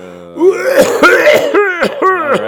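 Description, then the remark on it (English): A man coughs and clears his throat several times in quick succession, loud, with voiced, exaggerated rasping hacks. No speech accompanies them. “Is everybody coughing at these events?”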